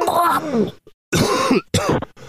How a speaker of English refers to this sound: Sorry. I have a very manly cough. There I go again. There I go.